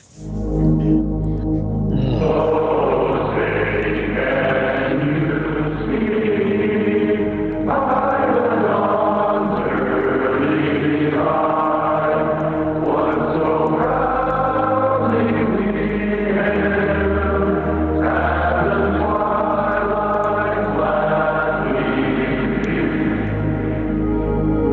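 A group of voices sings a slow anthem in unison, sustained notes swelling and falling, the sound thin and band-limited like a phone line, with a steady low hum underneath throughout.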